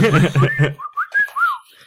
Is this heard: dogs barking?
no